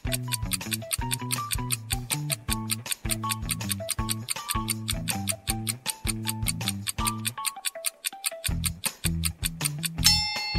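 A clock ticks steadily and briskly over a tense, pulsing music bed, the crisp evenly spaced ticks staying prominent throughout as a countdown for solving a riddle, with no voices.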